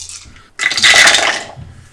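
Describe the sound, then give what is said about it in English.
A bright clatter of small hard dice, including a D4, tumbling across a hard surface for about a second as they are rolled during a tabletop game, then settling into quiet. No voices. “Pick up your dice and roll.”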